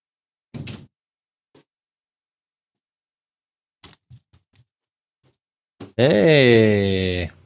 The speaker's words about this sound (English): Someone's banging on my door here. Just one second. That's not part of Overwatch.